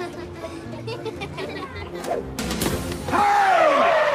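Amid a busy hubbub of children chattering on a field trip bus, a thrown sandwich smacks into the bus driver with one soft but sudden thwack, followed by a loud, drawn-out squealing cry.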